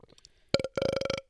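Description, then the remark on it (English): A loud burp on its own: a short initial gulp followed by a drawn-out, croaky, rattling belch lasting about half a second, with no talking around it. “But you would have so heard that burp.”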